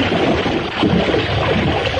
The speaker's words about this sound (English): Something is splashing!